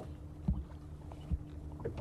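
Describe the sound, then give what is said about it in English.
A faint, distant motorboat engine drones steadily as a boat comes down a lake from Inchigill, a low continuous hum broken by a few soft thuds. “There's an engine. Yeah, there's a boat coming away down the lake now from...”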